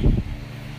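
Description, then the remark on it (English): An electric fan hums steadily with a low, even motor drone and a soft whooshing, opening with a brief dull thump before the constant tone settles in. No one speaks. “Let me turn off this fan. It's annoying my brain cells.”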